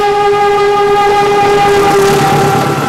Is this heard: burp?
no